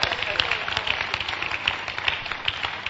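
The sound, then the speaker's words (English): An audience claps steadily, a dense wash of many hands with sharper individual claps popping out irregularly, holding an even, moderate loudness throughout. “But they are clapping because they understand it very well.”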